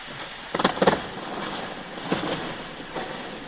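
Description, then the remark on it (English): A steady, airy underwater hiss of icebergs from a glacier melting in the sea and breaking into smaller parts, broken by scattered clusters of sharp crackling pops as small air bubbles inside the ice burst, like an ice cube in a glass, some in quick bursts of two or three, with no voices. “This starts with a hiss, which is the background noise of icebergs in the sea, and they're melting, so they're breaking into smaller parts.”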